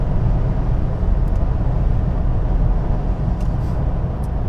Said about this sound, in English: I gotta put the beans on if I want to pass some of these fast movers here. Let's get up there. 4,500 RPMs, 100 miles an hour, 6th gear. Gotta get past the UPS truck. Guy's just flying.